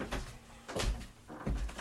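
A door is opened to let in a dog that was scratching on it: a short series of three dull clunks and rattles, like a latch and handle being worked, spaced about half a second apart with quiet between.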